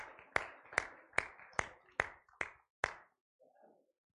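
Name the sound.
audience hand clapping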